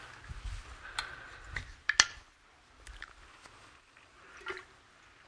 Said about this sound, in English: So 1, excuse me, let me grab my cup of water here.